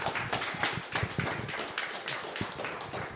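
An audience applauds the guests at the end of an evening question-and-answer event hosted by Big Car, a steady, dense round of clapping, many hands overlapping into a continuous patter that holds at an even loudness throughout, with no voices standing out.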